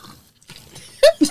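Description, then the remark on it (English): Two short, wet slurping sips of a drink taken in quick succession, after a moment of near silence with faint background noise. “Slurp I gotta clear before you said anything.”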